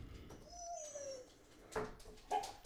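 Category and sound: animal, puppy whining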